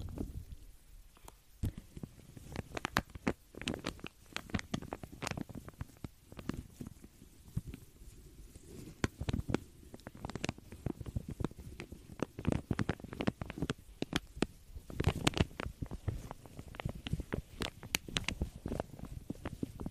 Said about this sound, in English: Absolutely correct. This comb is never coming out of this plastic bag. Why would it? It sounds heavenly. It sounds like crinkle dreams has come true.